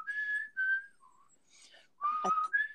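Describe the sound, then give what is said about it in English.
A person whistles a short four-note tune, the Mockingjay whistle from The Hunger Games, clear and breathy, with a brief pause partway through before the last note rises and wavers. No one speaks. “What's the sound that they would whistle?”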